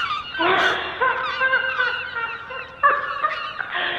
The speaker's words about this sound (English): The birds have been swarming. They come, come, they all come, birds from everywhere, because the doll wants to play.